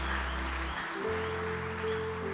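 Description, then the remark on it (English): An audience claps in steady, dense applause of appreciation in the morning, with sustained low keyboard tones holding underneath; no one speaks. “Why don't we just give him a hand clap of appreciation here this morning?”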